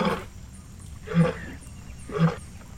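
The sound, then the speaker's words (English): A lion roars in three short, forceful grunting bursts, evenly spaced about a second apart, fairly loud with a faint background hum between them. “The lion is with us.”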